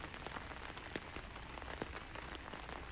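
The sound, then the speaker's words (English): Steady rain pattering on a hard surface, a dense continuous hiss dotted with sharper individual drops, with no voices present. “So I'm waiting in the rain.”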